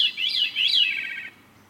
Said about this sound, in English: And that's because it actually is two notes at once. Veeries and other birds have a structure in their throats that evolved to make two-tone songs. They basically have two voice boxes.